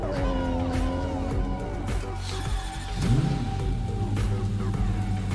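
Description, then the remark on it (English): A tuned car engine drones steadily with a rich, buzzing tone, its pitch swooping up and back down briefly midway through before settling into a constant, fairly loud hum. “so we started with the powerful muscle cars, and then we went to more screaming tuned V6s, inline 6s, and then we went to V10s”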